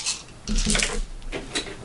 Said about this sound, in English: Well, no. I roll to see if he hits, and then I roll his damage.